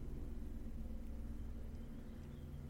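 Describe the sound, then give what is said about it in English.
A helicopter buzzing around an apartment in Los Angeles, a low, steady droning hum throughout, a faint rumbling buzz with a layered tonal drone and no voices. “You may also hear the sound of a helicopter buzzing around my apartment, because Los Angeles, that's just the way it goes.”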